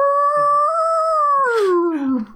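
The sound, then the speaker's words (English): A person in a radio studio imitates a wolf howl as a morning DJ character: one loud, sustained wavering note that slides downward at the end, with no other sounds around it. “Yeah, we're joined in the studio by ….”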